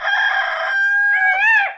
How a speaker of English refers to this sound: put some birds in case I can't hear birds.